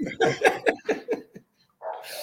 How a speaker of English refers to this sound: we do have a special guest in the background at CB's house. What's your dog's name, mate? That's Georgie, going nuts. Georgie, okay.